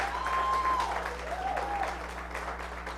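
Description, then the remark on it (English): A church audience applauds their pastor, a dense, steady patter of many hands clapping at an even level, with a couple of brief higher-pitched whistles or cheers rising above it and a low steady hum underneath. “You can be seated, but before you do, clap for your pastor.”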